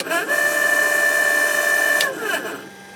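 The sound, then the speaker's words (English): An aircraft auto trim alarm, sounded as a demonstration: a steady, high electronic tone with bright overtones holds for about two seconds, then cuts off abruptly, leaving a brief fading tail and no voices. “just going to sound off the auto trim alarm.”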